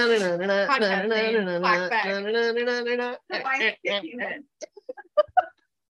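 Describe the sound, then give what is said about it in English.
A person mimics a rooster's crow with one long, drawn-out, wavering vocal call lasting about three seconds, followed by several short choppy vocal bursts, fairly loud. “Cock-a-doodle-doo.”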